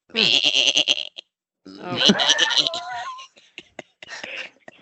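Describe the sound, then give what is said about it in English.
A person imitates a whiny goat bleat, two wavering, nasal cries about a second each with a short gap between, followed by a few soft clicks and breaths. “That was a whining goat. That was a whiny goat.”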